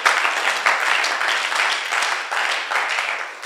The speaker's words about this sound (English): Clap for Jesus. Wow.